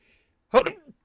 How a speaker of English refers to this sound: Excuse me, I had to sneeze. Excuse me.